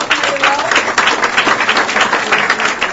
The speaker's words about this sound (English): Hey, a round of applause for them.